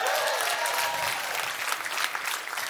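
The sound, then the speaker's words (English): Soft, scattered applause from a church audience, answering a question about fasting during a New Year week of prayer and fasting: many hands clapping in a dense, steady patter with a bright, crackling texture, fairly subdued and fading slightly toward the end, no voices. “As you can tell, the clapping is a little soft.”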